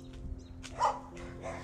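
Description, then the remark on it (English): Dogs bark outdoors on a cloudy day, a few short, faint barks with one slightly louder yelp in the middle, over a low steady background hum. “The Dr. Zeus podcast is brought to you by puppies, moons, cold breeze, chairs, oh, Twilight Bark.”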